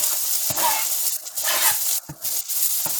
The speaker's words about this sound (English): It should sizzle because we are cooking over high heat, medium high heat.